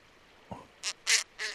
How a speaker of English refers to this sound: What is it? What's this one? This is the snowy owl. This is a call from him.